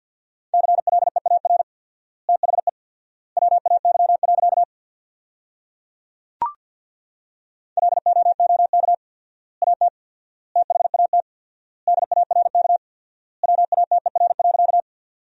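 Rapid Morse code at 50 words per minute with 4x word spacing, sending sentences built from the top 500 words: a single steady mid-pitched tone keyed in fast bursts, with word groups separated by long silent gaps and one sharp click midway.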